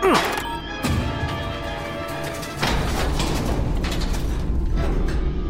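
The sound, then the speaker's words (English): A door is sealed shut: a descending mechanical whine and a heavy clunk, another thud, then a louder slam that gives way to a steady rumbling hiss. “Here, I'll seal the door.”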